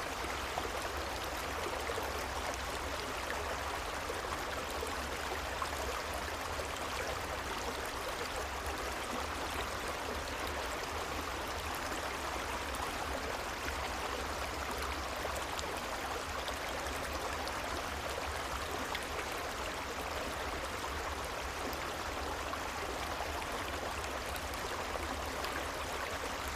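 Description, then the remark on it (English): A creek flows steadily with a soft, continuous babble and hiss of running water, quiet and even throughout with no voices or other sounds. “as you let yourself fall asleep by this quiet creek, knowing no matter what comes, the mountain is strong.”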